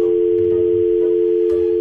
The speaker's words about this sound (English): All right, so the phone is ringing.